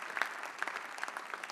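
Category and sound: crowd, applause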